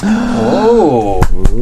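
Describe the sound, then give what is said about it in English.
A voice lets out a drawn-out, rising gleeful squeal, followed right after by two sharp, happy hand claps in quick succession. “… goes, yee, and claps very happily”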